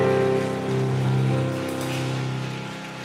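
Steady crowd applause at a church service, a dense crackling patter, continues for about three seconds alongside sustained keyboard or organ chords, holding fairly loud before easing slightly at the end.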